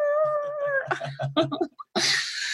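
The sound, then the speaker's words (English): A person snorkeling in the water squeals and whistles through a snorkel in a high, wavering tone imitating dolphin calls, breaking into choppy chirps and clicks before ending in a breathy, hissing burst. “Like, and we're doing terrible dolphin impressions.”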